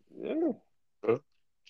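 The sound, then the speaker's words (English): A dog vocalizes in a room: a drawn-out, wavering whine or howl, a brief pause, then one short, sharp bark. No one speaks. “Good dog.”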